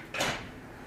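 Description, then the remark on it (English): A door swings shut with one abrupt knock and a short fading rattle, then a low background hum is all that remains. No one speaks. “We're gonna pause, I'll edit this, I'm gonna close that door real quick.”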